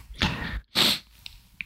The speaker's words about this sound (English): I'm sorry, I have a sneeze and I don't want to sneeze into my microphone. It will be really loud.